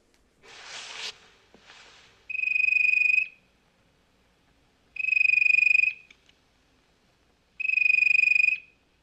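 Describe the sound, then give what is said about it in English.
An unusual ringtone on a woman's phone sounds three times: steady, buzzy electronic tones about a second long at even intervals, fairly loud, after a brief burst of rustling. “With the, I guess, the ringer on her phone is not one I have ever heard anywhere ever.”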